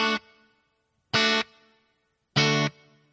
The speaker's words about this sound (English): Next, they added some reverb. Here's the reverb.